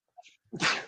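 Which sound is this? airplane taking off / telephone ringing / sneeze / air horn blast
sneeze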